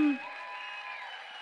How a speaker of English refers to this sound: Those who are getting baptized, you want to make your way up to the stage. The band can come too. And can we just cheer like crazy people?